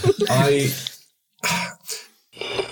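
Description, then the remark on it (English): A drawn-out voiced sound gives way to a few short, rough bursts of coughing and throat clearing from a sick person, fairly loud, separated by brief pauses. “That's a stalling cough, I know it.”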